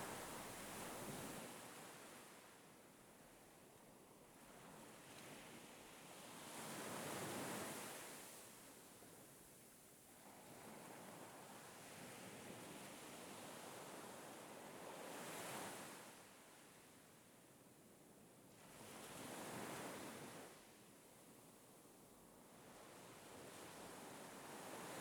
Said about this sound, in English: The grey sea breaks gently on the black sand, leaving behind a dramatic line of white foam.